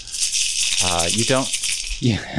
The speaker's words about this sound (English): So you all have your shakers again as buzzers.